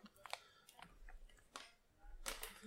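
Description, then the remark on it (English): A zipper on a coffee bag is worked in a few short, raspy bursts, with a longer rough pull near the end. It's quiet, with no talking. “Bro, it's a zipper back here.”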